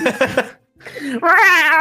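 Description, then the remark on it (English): A few quick bursts of laughter, a short pause, then a voice doing a loud, drawn-out, wavering meow like a pleading cat begging to be taken along. “the cat who can understand Twink is like, no, take me with you. Yeah, I just hear that.”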